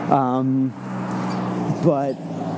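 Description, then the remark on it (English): A car passes on a busy street while someone walks home, its broad rushing engine-and-tire noise steady and fairly loud, with a person's voice briefly speaking over it at the start and near the end. “And I'm walking home right now and trying to dodge traffic at the same time.”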